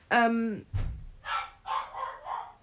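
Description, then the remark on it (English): A sharp bang or thump rings out in an abandoned school, followed by the speaker's dog barking three or four times in quick succession, loud, with a brief tonal whine just before the bang. “Okay, I don't know if you heard that, but there was a big bang and then my dog started barking.”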